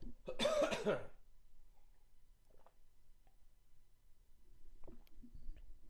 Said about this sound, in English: I'm going to take a quick second here to just take a sip of my coffee and water and clear my throat, so my apologies.